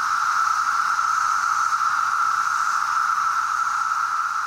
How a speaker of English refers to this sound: They were just so loud. You know, you could hear them everywhere. Now, if you live in the US, masses of cicadas called broods show up every now and then.